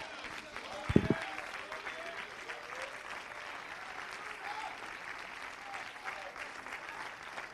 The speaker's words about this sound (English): Somebody give him a hand clap. It's time for another standing ovation to the King of Kings and the Lord of Lords.